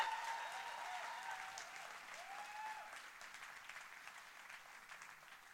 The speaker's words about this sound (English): Can we give Lewis another massive round of applause?